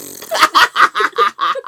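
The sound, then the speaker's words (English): A voice imitates a string of fart toots, about seven quick buzzy bursts in a steady rhythm, loud, with no other talk. “I have a crank on my hand and when you crank it, I toot.”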